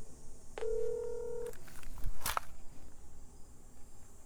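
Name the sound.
telephone keypad dialing tones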